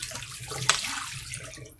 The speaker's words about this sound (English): And so I am now, I use a water stop, so the developing has stopped. Yeah, so question, with the water stop, how many times should I fill up this tank? I'd say 3.